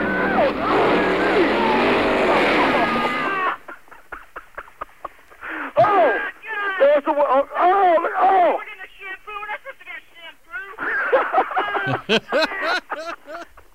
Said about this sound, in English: Okay. Driving through a car wash in celebration of the opening of hurricane season. There's a red light. And the water.